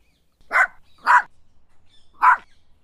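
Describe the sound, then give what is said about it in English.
A puppy with black spots on a white body barks three times, two quick yaps close together, then a pause before a third, each short and sharp against an otherwise quiet background. “Until Gunda starts barking.”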